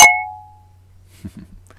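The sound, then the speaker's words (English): Glasses clink together once in a toast in Montana: a sharp, bright strike whose high ringing tone fades out within about a second, followed by a couple of soft, low shuffling sounds over a faint steady hum. “So, you know, cheers to the long run of Falling Rock Tap House and Chris Black.”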